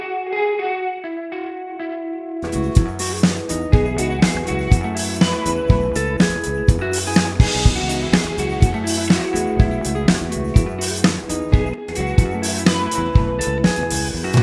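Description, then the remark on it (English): A lead electric guitar drenched in bright reverb holds sustained notes alone at first, then a full band with a steady, punchy drum beat kicks in beneath it. “I'm going to add my bright studio reverb.”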